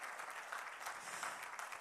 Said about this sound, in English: Can you give God a hand clap of praise this morning? Okay.